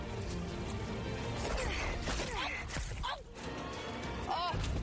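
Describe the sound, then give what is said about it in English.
A catapulted watermelon flies forward, comes back and smashes into the face of the woman who launched it with a heavy, wet crash, set against a dense, noisy background with voices and a few other short thuds and swishes. “Right in the kisser, show that guy who's boss, flies forward, comes back, smashes her in her own face.”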